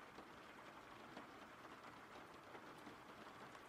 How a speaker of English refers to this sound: The rain is fine. Awesome.